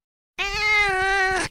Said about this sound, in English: The cat. Loud Mimi.